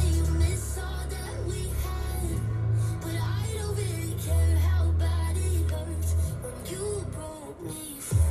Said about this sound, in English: That's a bassy part there, so yeah. And that's the radio.